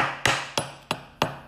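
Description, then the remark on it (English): Four sharp metallic taps at a steady, unhurried pace, each a bright click with a short ringing decay, made by tapping metal fingernails. No voices. “Dude, I even bought like this is like metal. Listen.”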